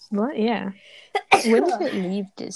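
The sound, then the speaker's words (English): A single sharp sneeze bursts out between stretches of casual conversation, brief and loud against the surrounding voices. “Bless you.”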